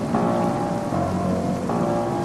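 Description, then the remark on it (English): Steady, dense rain pours down on city streets on a holiday, Thursday, October 31st, a continuous hiss with a low rumbling undertone and no voices. “The city streets are crowded for the holiday, even with the rain.”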